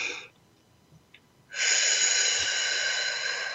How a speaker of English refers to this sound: Take another breath. Keep breathing that way.